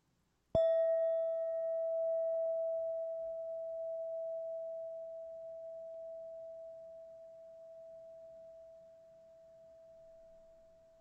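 signal or alarm, meditation bell ringing

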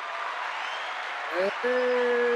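crowd, applause

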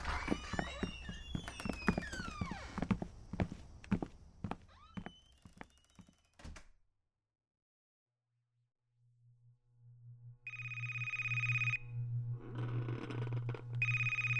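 household object, telephone ringing

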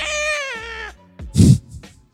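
animal, cat meowing

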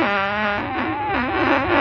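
human body sound, fart sound

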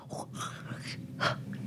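human body sound, someone breathing

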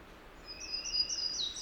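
bird, warbler singing

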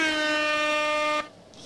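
sound effect, air horn sound effect

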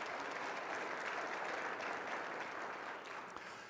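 crowd, audience round of applause

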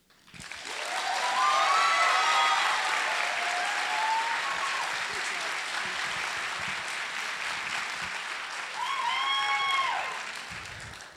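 crowd, audience cheering and applause

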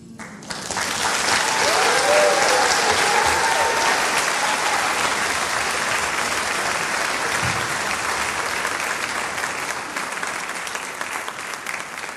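crowd, audience applause

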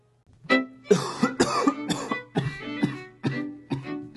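human body sound, coughing and throat clearing

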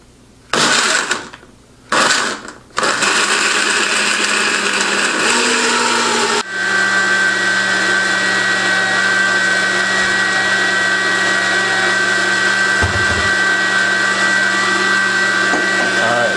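household object, blender motor running

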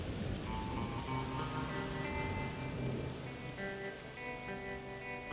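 nature, rain falling

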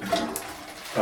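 household object, toilet flushing

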